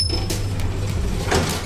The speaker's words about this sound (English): The lift reached the lobby, and the doors slid open.